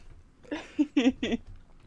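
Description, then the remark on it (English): A cat lets out a quick run of three or four short, chirpy meows in close succession, fairly quiet, with nothing else going on. “Yeah, Ragnarok Rose, you're getting your money's worth here tonight, with the cats popping up.”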